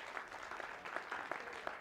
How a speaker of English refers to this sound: It was amazing. It was amazing. I think you should give them a round of applause.